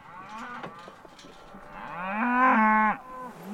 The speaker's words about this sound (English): And then suddenly, we're surrounded by cattle.